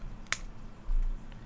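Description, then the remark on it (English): A tall boy can of juicy IPA beer cracks open with one sharp, bright snap of the tab, followed a moment later by a short, low fizzing rush. No one speaks. “Just pop the top on this.”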